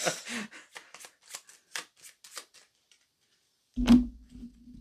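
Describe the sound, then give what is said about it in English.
A deck of playing cards is riffled in a quick burst of crisp, fluttering snaps, followed by a pause and then a louder thump with a low resonant knock, with no talking. “Shuffle.”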